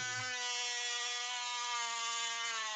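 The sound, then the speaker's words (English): A power drill whirs steadily and loudly for a few seconds, its high motor whine holding an even, sustained pitch with no voices present. “Sorry, I'm drilling.”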